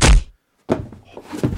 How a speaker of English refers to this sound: Holy crap. They just headbutted and knocked each other out.